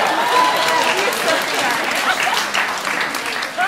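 A crowd applauds steadily for a few seconds, a dense, even wash of clapping that stays loud throughout without tapering off.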